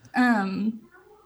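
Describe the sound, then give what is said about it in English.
A cat lets out one loud, drawn-out meow lasting about half a second, with a whiny, almost child-like tone, followed by faint quiet background. “I was going to say that the cat is very loud. I thought it was a child.”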